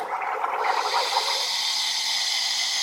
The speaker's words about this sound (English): So steam the milk.